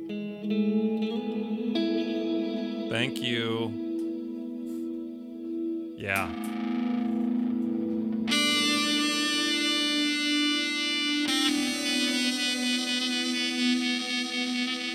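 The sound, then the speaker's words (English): A heavily effected Burns electric guitar, played through a Hall of Fame reverb, an Old Blood Dark Star and an EHX triangle pedal, rings out in long, washy sustained chords with a couple of swooping pitch bends, then turns bright and fuzzy with thick reverb trails; a voice briefly speaks over it. “Burns guitar into Hall of Fame reverb into a Dark Star from Old Blood into a EHX triangle.”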